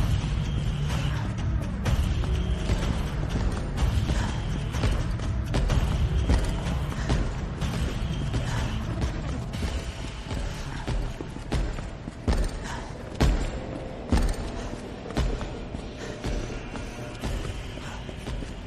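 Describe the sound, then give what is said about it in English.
Heavy, thudding footsteps of a modified Mr. X, the Tyrant, in a video game stomp amid creaking, mechanical ambience, loud and close to the hiding place at first, then growing somewhat quieter as they slowly move away. No one speaks. “Something about those footprints stomping close to your hiding place and then slowly stomping away.”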